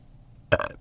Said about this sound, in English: And that's the first time I burped. And there it is.